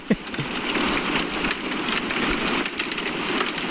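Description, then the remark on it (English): Steady rain drums on a shed roof, a dense, even patter of countless drops at constant loudness, with a few sharper taps near the start and no voices. “That feels like rain on a shed.”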